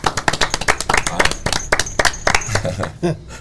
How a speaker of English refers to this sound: Everybody clap